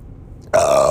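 A single loud, close burp erupts abruptly after a brief low rumble, sustained and raspy for about half a second with no talking over it.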